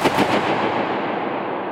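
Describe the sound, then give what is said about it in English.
A single sharp balloon burst rings out inside a dome. A long, washing reverberation then circles around the dome's curved walls and slowly fades away. No one speaks. “Bursting a balloon was one of his favorites.”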